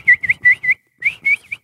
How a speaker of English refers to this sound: You can't whistle and smile at the same time.